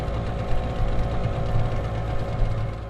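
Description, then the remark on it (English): A fishing boat engine on the Nile in Khartoum, Sudan, chugs steadily in the morning, a low, continuous rumble with a faint rhythmic knock and no voices over it. “Fishing boats are ready out this morning on the river.”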